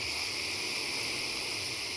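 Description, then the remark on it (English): A long, slow breath drawn in through the nose during a breathing exercise, the belly filling out like a balloon, heard as a soft, even, airy hiss that lasts about two seconds with no talking over it. “Inhale, nose, belly goes out like a balloon.”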